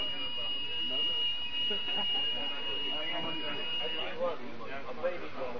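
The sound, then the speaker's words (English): A steady, high-pitched building alarm rings continuously in a hall beneath a crowd of overlapping voices, then abruptly stops while the people keep talking. “Well, the alarm been stopped, so inshallah I take it there is nothing wrong.”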